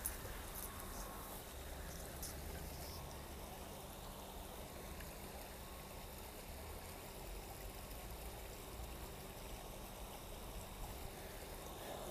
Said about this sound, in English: Okay, remember I said I thought the stream is not far. Just made it to the stream. There is some water. Let's see if you hear this.